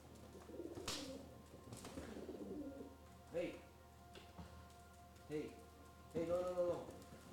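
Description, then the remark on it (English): Fighting pigeons or doves coo in short, throaty bursts as a big one pecks a little one named Marsh, with a longer, louder coo near the end and brief rustling flaps early on. Low background hum runs throughout. “The birds. The birds are fighting. No, stop pecking her.”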